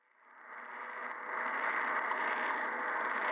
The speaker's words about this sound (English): There's definitely a lot of interference coming from thunderstorms, for example. That's where a lot of that transatlantic static is coming from. But underneath all of it, there is still always a steady background hiss at a very specific frequency.